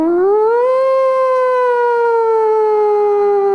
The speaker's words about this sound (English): Song starts off with a siren. It's so creative.